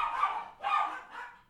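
A dog barks three times in quick succession, the barks sounding somewhat muffled, with the last one a little softer. No one speaks.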